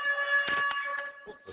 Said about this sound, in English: You heard that little bell? That little buzzer shit we got now? Obligated to that break. That was all. That's the bell for y'all to go to break?